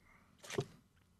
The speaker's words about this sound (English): So my very first Tim Hortons coffee is about to be drank. And good thing you got the double-double because we want lots of cream and sugar. Oh, he's taking a big gulp.